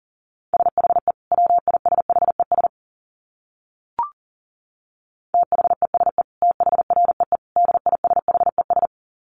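Rapid Morse code at about 40 words per minute: a steady mid-pitched tone keyed in quick dots and dashes, pausing briefly around a single sharp click before the fast sending resumes.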